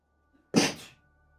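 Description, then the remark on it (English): A single sharp sneeze bursts out, an abrupt explosive blast that quickly trails off into quiet, with no talking around it. “Bless you”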